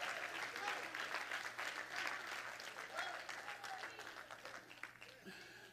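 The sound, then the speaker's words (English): An audience claps steadily in a dense, continuous wash of hand claps, with scattered voices shouting and calling out over the applause throughout. “Come on, somebody, clap your hands and shout, yes!”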